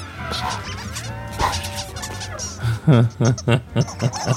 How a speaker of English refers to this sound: It's just the birds making squeaky noises.